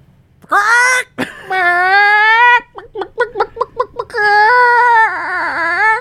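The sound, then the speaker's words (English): A person vocally imitates the horrifying scream of the monster Cluck-Thulu: a loud, high, wavering wail, then a quick run of stuttering yelps, ending in another long, shrill cry. “And he screams a horrifying scream.”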